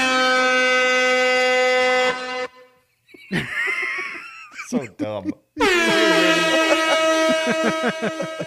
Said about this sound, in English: You get a special air horn for that.